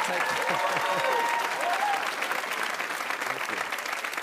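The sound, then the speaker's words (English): An audience applauds steadily after a joke about Trump and Mueller, a dense wash of many hands clapping at even loudness, with a few faint voices and cheers mixed in underneath. “Thank you for applauding my breakdown.”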